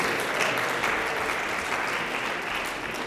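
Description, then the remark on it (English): At a chapel service, an audience applauds visiting high school juniors in a steady, dense wash of many hands clapping, holding a fairly even level for a few seconds before easing slightly toward the end. “Yes, you over here can clap for them.”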